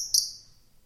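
A bird call whistle, which came in a gear shipment for a Mount Whitney hike, gives one shrill, high-pitched note. It starts sharply, holds briefly, then fades out in under a second, with no talking.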